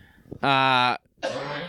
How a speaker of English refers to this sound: I'm going to cough to death just anyway, to be done with this.